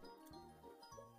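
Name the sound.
whistle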